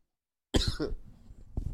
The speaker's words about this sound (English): I thought I was going to be okay. Got a little cough there.